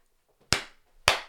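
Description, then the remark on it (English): Two soft hand claps about half a second apart, each a sharp, dry smack with a short fading tail, fairly quiet, with no talking around them. “It's really shit clap.”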